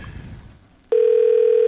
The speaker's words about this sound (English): We're gonna get a little phone call right here. A phone call.